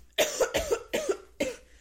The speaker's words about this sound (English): My voice still sounds like... You can hear it still in my throat. I cough.